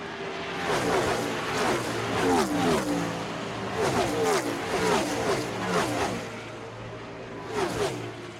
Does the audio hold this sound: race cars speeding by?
yes